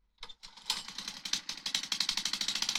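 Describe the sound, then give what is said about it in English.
A small lawnmower engine sputters to life and settles into a fast, steady chugging rhythm, loud, with no voices over it. “Lawnmower.”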